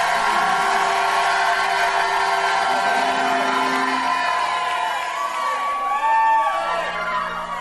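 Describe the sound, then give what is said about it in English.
A crowd of people shouts and cheers loudly together, with overlapping whoops and rising cries forming a continuous roar of voices that swells near the end. “I'm going to stop till somebody shouts like that some more, man.”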